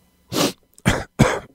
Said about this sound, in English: Is that why you're sneezing? You sneezed already twice during the show.